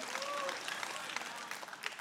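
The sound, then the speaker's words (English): Audience applause, a steady, dense wash of many hands clapping for about two seconds, with a brief high vocal whoop rising over it at the start. “Come on, if you're going to clap, commit, all right?”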